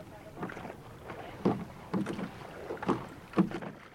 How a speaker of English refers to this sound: The team walks the boat out into the bay. Once in the water, the crew begins the workout. Starting out this morning with a pick drill. Ready? Row.